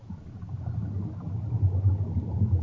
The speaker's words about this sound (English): So here's the bubbles first.